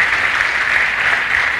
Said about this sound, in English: Mukubire ko mungalo. Clap for me.